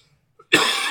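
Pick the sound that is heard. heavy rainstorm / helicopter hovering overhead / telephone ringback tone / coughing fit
coughing fit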